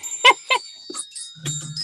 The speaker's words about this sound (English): This is a set of chimes.